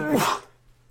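A single quick sneeze, slightly muffled as the microphone is shielded, bursting out sharply and then fading into near silence.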